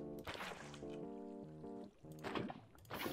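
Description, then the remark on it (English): Splashy bursts of video game water being placed and pouring, repeating a few times over a steady, stepping tonal background melody; moderately loud. “And then you put the water right there.”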